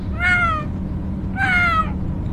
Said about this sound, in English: But Felix still mewed sadly all the way along the road until the car stopped.